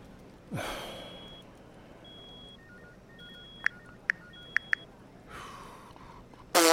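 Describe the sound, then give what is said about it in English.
A mobile phone notification chimes from Mark Alan Nichols' unlocked phone, left on the same settings under crime scene protocol: a run of short, bright electronic beeps with a few sharp clicks. A breathy sigh comes just before it and another after it, and no one talks. “Can someone come and mute Nichols' phone? Or change the bloody notification sound?”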